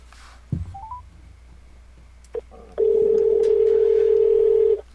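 A phone line: a few brief electronic touch-tone beeps and a click, then a single loud, steady tone held for about two seconds before cutting off. No one speaks.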